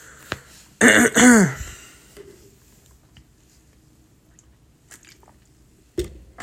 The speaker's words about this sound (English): Drinking my water here, guys.